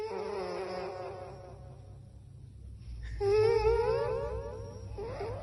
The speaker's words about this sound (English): Oh, cuteness. Listen to these dogs sleep.